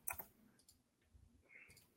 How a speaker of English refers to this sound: And I'm typing, hey.